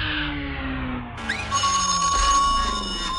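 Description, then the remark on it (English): A telephone rings with a bright, sustained tone that cuts in partway through, loud over a low rumbling background, with no one speaking. “Hello? Give me that phone.”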